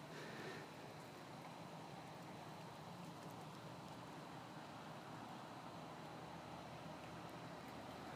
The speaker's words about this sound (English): also known as the rattling of the refrigerator, air conditioning across the street, the hum of the cars going by, and the swish of my flip-flops.